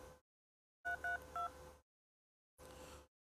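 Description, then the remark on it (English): Three quick touch-tone beeps as a phone number is dialed, clear over a hiss of line noise that cuts in and out, with no one talking. “Maybe they hooked their phone up between then and now”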